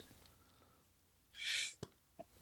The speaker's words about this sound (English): Well, I'm about to sneeze.